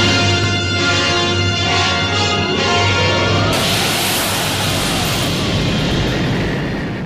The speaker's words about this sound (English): A tremendous wind is heard. The glass ceiling breaks, and the tornado lifts Dorothy up through the glass ceiling and into the tornado.